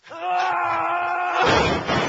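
A strained, drawn-out vocal wail gives way to a loud crash as bongo drums are knocked over during an MTV Unplugged performance, a rough clattering burst that rumbles on briefly.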